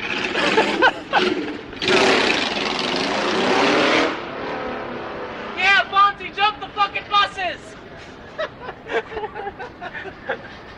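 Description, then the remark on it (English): A loud motorcycle engine roars past for about two seconds, rising and fading, with people chatting before and after it goes by. “I hate motorcycles.”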